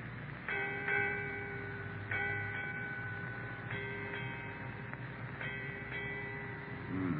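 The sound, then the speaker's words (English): A ship's bell strikes eight bells in evenly spaced pairs, each clear metallic clang ringing on with a sustained bright tone before the next pair, heard alone without voices. “Eight bells, Captain.”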